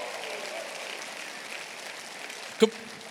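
audience clapping and shouting

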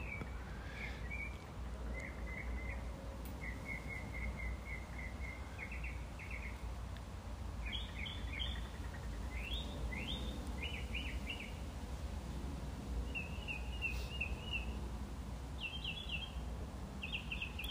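birds singing

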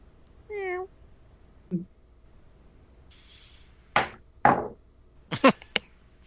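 cat meowing

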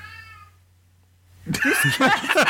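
cat meowing loudly

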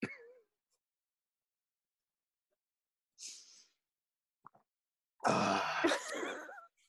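person drinking water

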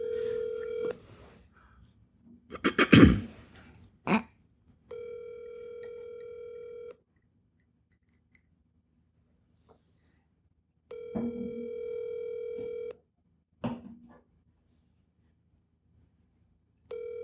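phone ringing on speakerphone

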